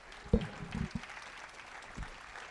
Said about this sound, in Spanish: Yo quiero que usted dé un aplauso a Jesucristo.